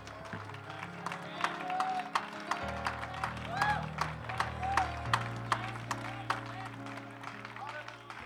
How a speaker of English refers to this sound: Give him one more hand clap and shout of praise before you're seated.